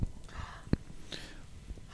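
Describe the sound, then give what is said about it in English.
A person gasps with a short, breathy intake of air, faint, amid quiet room noise and a brief soft knock. “So I'm going to go, just while you're thinking and gasping, Eric Dier.”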